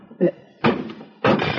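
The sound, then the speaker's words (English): Someone whacks a jammed slot machine, stuck because a matchbox blocked its payoff slot so coins couldn't come down: three heavy thumps at uneven intervals, the first shorter and lighter, the next two loud and broad with a rattling, lingering tail after each blow. “All right, the machine here's probably stuck. I'll whack it a couple of times.”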